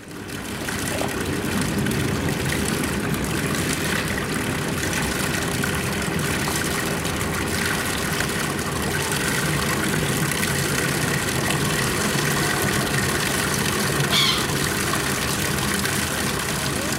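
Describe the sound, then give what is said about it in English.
A boat engine idles steadily for the whole stretch while the boat lies by the Fischerinsel in Berlin, a constant low rumbling drone with a broad, hissy wash over it, even in loudness throughout. “And this boat is lying by the Fischerinsel.”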